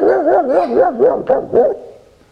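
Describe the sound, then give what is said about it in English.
Several children's voices together imitate a ferocious dog bark on a count of three, loud, with wavering, howl-like yelps and a few sharper bark bursts before trailing off. “One, two, three, bark!”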